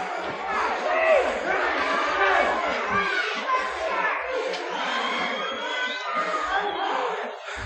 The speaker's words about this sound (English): Listen to this crowd. They're putting up a big number one and USA.